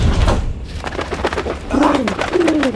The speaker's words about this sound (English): filthy pigeons.